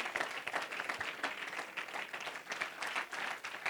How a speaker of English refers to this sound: Why don't you give the Lord one more great hand clap of praise in this house.